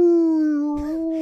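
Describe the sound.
A person voices a sustained, tonal squeal imitating a dolphin call: one steady, fairly loud note lasting about a second, with a brief breathy rustle near the end.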